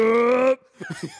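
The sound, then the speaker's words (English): A voice imitates the battle yell of Colossus from the old X-Men arcade game: one loud, sustained, steady-pitched shout lasting about half a second, followed after a brief pause by a few quieter spoken syllables. “At one point, … does a Colossus yell. Can you demonstrate?”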